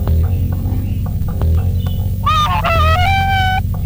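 A pheasant calls with a few harsh, honking cries clustered near the end, loud, over a steady low rumble of outdoor background noise.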